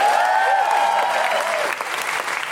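An audience claps steadily in a dense, continuous burst of applause, loud throughout, with a faint whistle or cheer tone rising and falling over the clapping early on.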